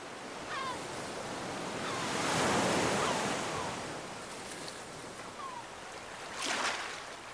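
Ocean surf rushes steadily in a blustery wind, with waves swelling and breaking around the middle and again near the end, plus a few faint high chirps in the background. No one speaks.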